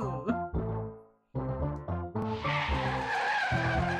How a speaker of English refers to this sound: That was me dying. I mean, that was you getting hit by a car.